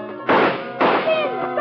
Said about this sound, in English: but just as I get there, the door opens and her stooge Sin comes in. Stop! Stop! Come back! Sin, stop shooting!